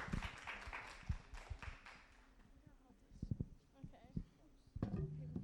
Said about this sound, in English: who is going to help me with this part of the sermon, and if you guys would give her a round of applause.